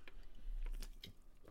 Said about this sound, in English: So let me take another sip of my Coke, and then let's read this from Mass today.